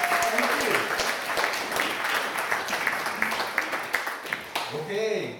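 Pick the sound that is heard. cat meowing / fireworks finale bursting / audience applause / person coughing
audience applause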